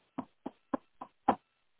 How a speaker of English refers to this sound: Well, next thing she knows, she hears a knock on her door.